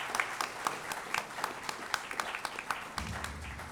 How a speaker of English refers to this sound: How about a big round of applause for our panel today? Thank you so much.